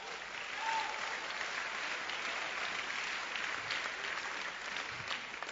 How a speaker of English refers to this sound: If you understand it, you clap your hands.